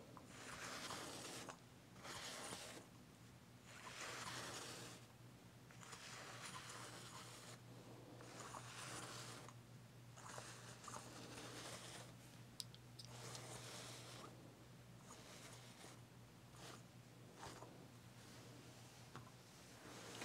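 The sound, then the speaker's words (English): An iron slides back and forth over taut, perfectly stretched shirt fabric up to the shirt's seam in repeated soft, scraping strokes, each a few seconds long with brief pauses between, over a faint steady low hum. Quiet, no talking. “Perfectly stretched fabric that we can easily glide over.”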